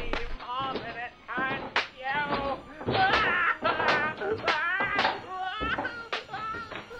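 Repeated sharp whip cracks lash against something hollow at an uneven pace, tangled with a man's loud, wavering sobs and anguished wails that rise and fall throughout.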